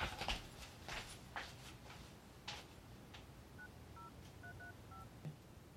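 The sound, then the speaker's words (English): A series of short electronic keypad tones as a phone number is dialed on the caller's parents' phone, about eight quick beeps in an uneven rhythm, preceded by faint handling rustles and clicks. “I'm calling from my parents' phone, sorry.”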